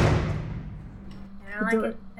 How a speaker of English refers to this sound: The nurse heaves herself off her chair and fiddles with an impressive key collection before finding the right one for the east door. She barely waits for you to cross the threshold before she shuts the door with an echoing clang.